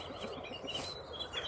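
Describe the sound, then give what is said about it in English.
Faint bird chirps sound intermittently over a steady outdoor background hiss, with a couple of brief, higher tweets standing out near the middle and end. No one speaks. “Bird song.”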